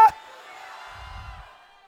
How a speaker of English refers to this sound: I feel the Holy Ghost. Somebody scream hallelujah.